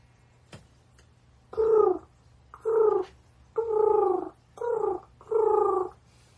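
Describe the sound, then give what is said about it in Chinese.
A person imitates pigeon cooing with five short, throaty coos in a steady rhythm, fairly loud, with brief pauses between them and no talking. “我超会学鸽子的。”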